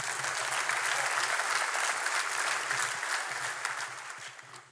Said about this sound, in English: Thank you, guys. You can go back to your seat. Go ahead and give them a round of applause.